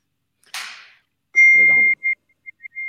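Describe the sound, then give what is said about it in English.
A brief noisy whoosh, then a steady high-pitched electronic beep followed by several short repeated beeps, like a phone text alert, with a voice briefly murmuring underneath. “Sorry, I think that might have been a text.”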